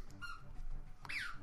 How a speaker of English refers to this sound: Do not mind the squeaky noise. That's my dog in the background.